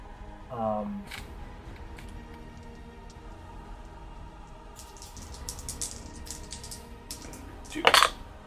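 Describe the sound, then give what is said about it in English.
Dice clatter across a tabletop as players roll hit dice for a short rest in a tabletop role-playing game, a scatter of small hard clicks ending in a brief louder rattle; a voice is heard briefly near the start, otherwise quiet. “You all can roll hit dice for a short rest.”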